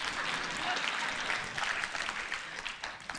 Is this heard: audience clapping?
yes